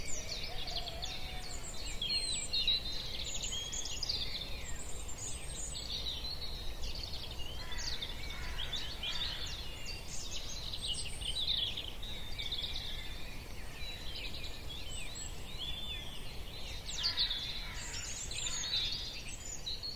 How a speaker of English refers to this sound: he rose with the dawn chorus, listening to the spring-like songs and calls of robins, chiff-chaffs, and even a rooster.